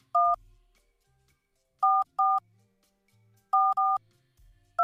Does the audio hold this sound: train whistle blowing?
no